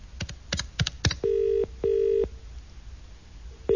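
A phone number is dialed to call BT at 11 p.m., with four quick, sharp key presses, followed by two steady electronic telephone tones in a double burst, then near quiet. Nobody speaks.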